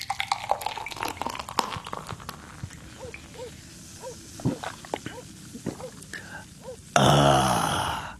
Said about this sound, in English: Here's your beer. Let me pour it for you.